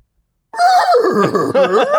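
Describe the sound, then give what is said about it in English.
A person's voice mimics a unicorn's horse-like whinny, a loud, wavering neigh lasting about a second and a half after brief silence, rising and falling with a shaky vibrato. “I assume they make the same noises as horses do, but I'm not sure.”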